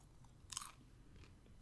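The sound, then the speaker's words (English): A single crisp crunch of someone chewing popcorn, with faint softer chewing after it against quiet background noise. Nobody speaks. “Crunching on some popcorn over there.”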